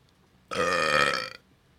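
A single loud, drawn-out burp lasting under a second, with a buzzy, croaky tone that starts abruptly and cuts off sharply, surrounded by quiet.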